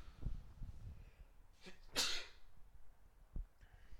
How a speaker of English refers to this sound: No, I'm just sneezing because I think you mentioned it.